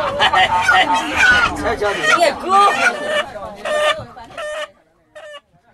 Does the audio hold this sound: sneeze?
no